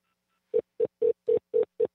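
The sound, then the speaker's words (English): A phone ringback tone during an unanswered call sounds as a quick run of seven short, buzzy beeps at a steady mid pitch, evenly spaced and fairly loud, with no voices. “What kind of a ring is that?”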